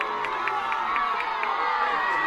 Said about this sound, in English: The crowd doesn't like it. You can hear the boos, but there was a foul called on Madison for pushing Alyssa Jefferson down. I think the crowd thought there was a little more acting than shove, but BYU does have possession.